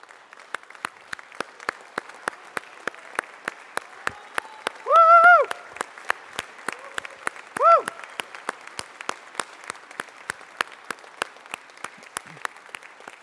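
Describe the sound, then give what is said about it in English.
A crowd applauds military veterans who are standing, with steady, rhythmic clapping that continues throughout, punctuated by two short, loud vocal whoops or cheers near the middle. “And for those of us who are not members of the military, just put your hands over your hearts in gratitude for what God has done, and then let's clap for them once again.”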